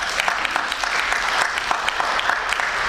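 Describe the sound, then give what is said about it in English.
Steady audience applause for two leaders from Mass Cultural Council, a dense wash of many hands clapping at a moderately loud, even level throughout, with scattered sharper claps popping out of the crowd noise. “Yes, please, applaud, please.”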